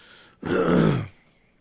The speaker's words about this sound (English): I'm sorry for all the coughs and everything, coughs and stuffy noses and all that jazz, man.